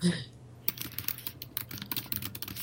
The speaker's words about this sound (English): So, I'm typing furiously here to get some articles in our show notes.